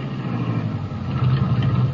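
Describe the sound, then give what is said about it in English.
A car's engine rumbles low as the vehicle slows to stop along an old road, a continuous droning hum with no voices over it. “It feels like the back tire's flat. Maybe I better stop.”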